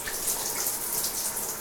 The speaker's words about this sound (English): She took a shower with the curtain open.